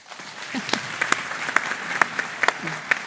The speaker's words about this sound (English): With commendable punctuality, Miss Goldstein appeared on the platform. The audience loudly demonstrated her arrival by applause.